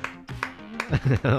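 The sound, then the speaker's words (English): A single person claps a few times, sharp, uneven slaps spaced out over the first second, before a voice comes in and takes over. “I'll just give you a real applause, but it's only me, so, you know, it might seem lackluster.”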